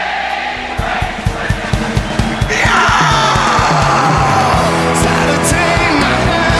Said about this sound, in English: But again, this is the moment that you've been building to, you know, this whole encore where everybody gets to throw up and scream, and we're in the celebration mode now.